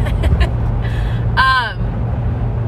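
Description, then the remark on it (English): Steady low rumble of a car cabin on the move, road and engine noise droning throughout, with a brief voiced sound and a few soft rustles. “So I am currently in the motherfucking car again.”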